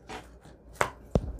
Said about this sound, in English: So I think I'm going to cut it about there. All right, and I'm just going to use regular fabric scissors for this part.